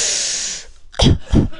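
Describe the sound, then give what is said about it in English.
A steady, bright hiss of steam from a vaporizer runs for over half a second, then cuts off and is followed by two short, breathy bursts with a low, thumping body. “I cough less now that I have a vaporizer.”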